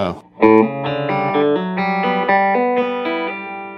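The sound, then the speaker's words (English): An electric guitar plays a quick lick learned from a guitarist, through effects, a run of about nine smoothly connected, sustained notes stepping up and down in the mid range, loud and distorted, with no talking. “And then comes some kind of …, licks I learned from ….”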